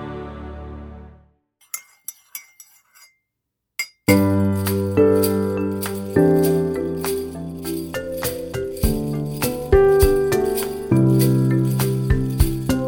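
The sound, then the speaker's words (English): Sleigh bells jingle, first in a few sparse, bright shakes after a short held tone, then in rhythmic bursts over a full, tuneful music track. “You may have noticed some sleigh bells there.”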